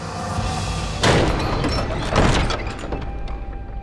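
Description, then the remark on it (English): The heavy doors to the great hall of a castle bang open with two loud, booming impacts about a second apart, each followed by a short reverberant decay over a steady background rumble. No one speaks. “Before Gull could object, the doors to the great hall banged open.”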